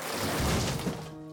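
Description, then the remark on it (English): A loud, sustained crash of a false stone wall, pulled with a crowbar, shattering and crumbling, a dense rumbling burst of debris that fades after about a second into a faint lingering ring, with no voices. “As you pull, the false wall shatters.”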